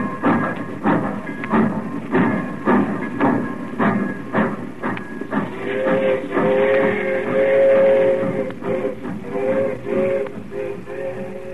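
A train pulls out of a station, its wheels thumping in a steady rhythmic clatter over the rails while a whistle-like tone rises and holds, the rumble loud throughout.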